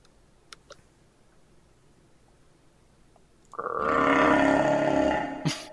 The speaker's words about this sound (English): What's that? Oh, that's a baby. My pet tiger. He's a star of my act. I keep his cage in here in my dressing tent.